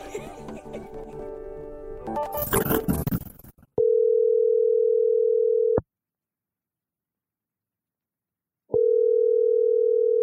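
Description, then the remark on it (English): A telephone dial tone sounds in two long, steady, loud electronic buzzes separated by a few seconds of silence as a phone call is placed, following a brief noisy musical passage at the start. “We are going to start with a phone call.”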